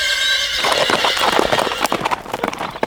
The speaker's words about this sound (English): There. She's tied to the saddle with her own rope. Pardon me, Miss Ruby, whilst I slap your horse's rump and get you on your way.